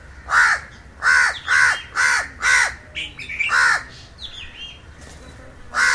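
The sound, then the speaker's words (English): Crows caw to one another in a quick series of harsh calls, about six loud bursts in the first three seconds, then another caw and softer chatter, with one more caw at the very end. “The crows are having their day. They're all talking to one another right now.”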